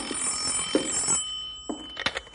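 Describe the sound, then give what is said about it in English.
A telephone bell rings at a ranger headquarters with a bright metallic jangle for about a second, then falls quiet before a few short clunks follow, as if the handset is picked up. No voices. “You want me to get the phone, Bill?”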